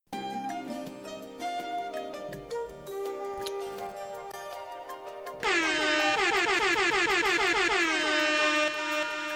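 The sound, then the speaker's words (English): A stretch of music gives way to a sudden barrage of loud, overlapping air horn blasts, repeated rapidly and blaring continuously for the final few seconds. “That's a lot of air horns.”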